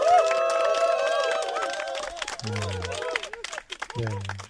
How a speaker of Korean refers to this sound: 아 여러분들 오늘 여러분들 함께해 주셔서 정말 감사드립니다. 네. 여러분들 박수 한번 주세요.